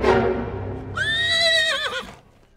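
A horse whinnies loudly, a bright wavering neigh that rises, holds, then trails off with a shaky flutter, preceded by a brief low rumbling snort.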